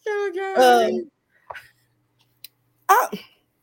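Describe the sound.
A strained, voiced vocal sound breaks into a harsh explosive burst, followed by a short quieter cough, a tiny click, and then another loud, raspy cough burst.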